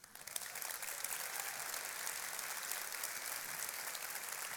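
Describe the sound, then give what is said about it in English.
A Sugar Hill Church audience applauds steadily to welcome Atlanta Falcons fullback Ricky Ortiz, a dense wash of many hands clapping at an even loudness for several seconds, with no voices rising above it. “But I'd love for you to give him a Sugar Hill Church welcome.”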